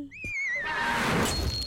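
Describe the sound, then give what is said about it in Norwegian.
A single bright clink of glass against glass, its high ringing tone wavering as it fades over about a second, followed by a soft wash of background noise. “Og en liten kling-kling-klang. Ja, for jeg likte den lyden.”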